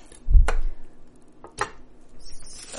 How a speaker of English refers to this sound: For dill, I just start chopping bits off the top and keep going. Maybe went a little heavy-handed on the dill here. That's all right. I've got like a big handful of fresh dill.